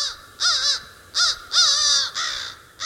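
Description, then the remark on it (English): A crow caws four times in fairly quick succession, loud and close, the harsh rasping calls separated by brief pauses with no one speaking. “It took a long time to garner the trust of these two birds, and now we have this sort of reciprocity of respect.”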